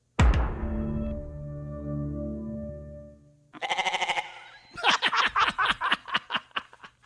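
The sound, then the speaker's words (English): A bright musical sting of the Netflix streaming intro rings out and fades, then a loud goat bleat wavers in, followed by a rapid, stuttering run of bleats to the end. “He thought that a goat was fun and quirky, so we decided to put it together and see what it might have sounded like.”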